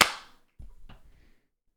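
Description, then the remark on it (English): One sharp hand clap, made to sync audio, rings out with a bright, snappy crack that fades quickly, followed by a few soft, low thuds and shuffling noises before silence. “All right, clap sync.”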